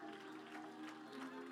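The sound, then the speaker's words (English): A church audience claps its hands to the Lord in a dense, steady wash of applause, with sustained musical tones underneath and no pause in the clapping. “Would you clap your hands to the Lord one more time?”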